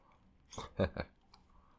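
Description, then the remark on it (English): Crisp crunching of someone chewing a mouthful of Skittles candy: three quick bites in a row, then a single small click. “That doesn't probably help right now that I've just swallowed some Skittles.”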